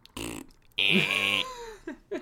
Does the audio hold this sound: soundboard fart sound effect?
yes